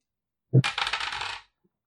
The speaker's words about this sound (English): Well, I'm gonna roll. These two dice again. Low. Pick high or low.